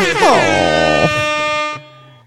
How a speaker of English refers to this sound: God, we used to use that buzzer so much. I know. I've been listening to the first couple episodes and abused it.